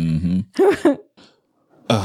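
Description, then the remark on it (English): A few rough coughs and throat-clearing bursts in quick succession, a short quiet pause, then another harsh vocal burst at the end. “Oh, man, I've been coughing a couple times down here.”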